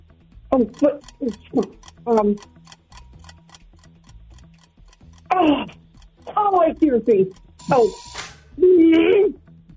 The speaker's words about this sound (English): Oh, that was the timer.